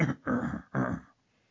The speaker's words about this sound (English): Let me clear my throat. And we just I have a lot of mucus built up in there.